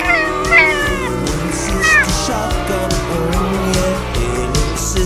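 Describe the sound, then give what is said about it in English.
A cat meows twice in quick succession, clear, over a steady, busy background din that continues after the meows stop. “How about let's hear it for my cat?”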